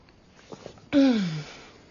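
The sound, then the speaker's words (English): A single loud sneeze: a couple of quick, faint intake breaths, then a sudden explosive burst with a voiced tone that slides downward and trails off, with no talking. “Bless you”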